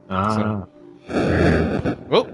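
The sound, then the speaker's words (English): A crunchy, lo-fi 8-bit style explosion bursts for about a second, loud, after a brief buzzy tone, then ends with a quick rising chirp. “We had like an 8-bit explosion there.”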